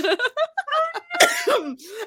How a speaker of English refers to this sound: I just cough when I laugh.